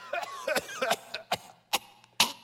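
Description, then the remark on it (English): A voice imitates coughing: a series of short, sharp cough bursts, about six in quick irregular succession, fairly loud, with no other talk. “They'd come in coughing.”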